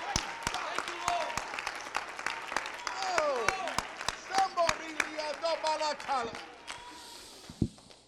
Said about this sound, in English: Give him a hand clap of adoration. Thank you, Lord.